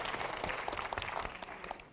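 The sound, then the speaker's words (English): An audience claps steadily for a couple of seconds, a dense wash of many hands with sharp individual claps popping out, fairly loud, with no one speaking. “Clap your hands.”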